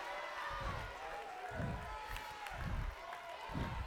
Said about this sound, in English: I love that you're clapping, but clap and speak the name.